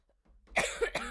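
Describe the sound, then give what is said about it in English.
Two short, harsh coughs in quick succession, fairly quiet, with a brief raspy tail after each burst and no talking. “I'm sorry for your coughing.”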